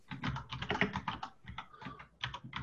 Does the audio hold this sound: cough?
no